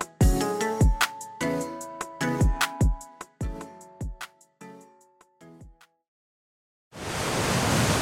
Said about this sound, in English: This ad is almost 3 million gallons long because it's exactly the same amount of time it takes for that much water to flow over the deck at Niagara Falls. So how does the deck stand up to all that water?